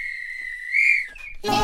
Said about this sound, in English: If this were a real bit of extra time, this is when the ref would blow the whistle. Because it's finished.